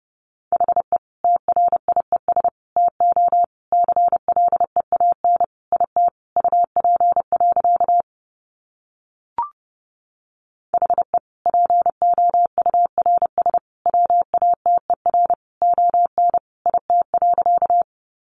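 Rapid Morse code at 30 words per minute: a single steady mid-pitched tone keyed on and off in quick dots and dashes, breaking for a short silence with one faint click before resuming.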